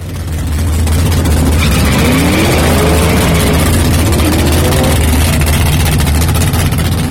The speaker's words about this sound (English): This is a rare 1 of 10 all-aluminum 494s that was made for Mario Andretti's Can-Am car back in 69